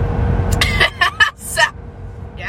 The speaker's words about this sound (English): So I'm finally like out of, you know, my fucking bed. I'm finally like on the road in my car.